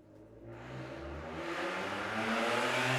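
A car engine revs up, its roar climbing steadily in pitch and loudness over a few seconds, close and prominent with no voices.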